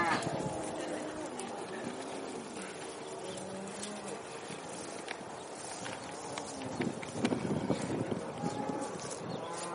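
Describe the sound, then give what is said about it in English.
Young cattle being let out clatter past in a rush of hooves on hard ground, a steady jumble of footfalls with low lowing calls mixed in and outdoor bustle behind. “Now, we're letting these out today, and I think we're going to let the cows out tomorrow.”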